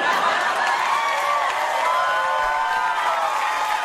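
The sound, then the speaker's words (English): A large crowd cheers wildly in a sustained, dense roar of voices with scattered whoops, loud and steady throughout without any break. “Crowd goes wild.”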